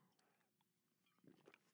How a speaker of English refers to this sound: I'm going to take a sip for this fine, high-quality H2O.